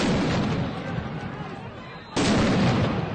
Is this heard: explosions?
yes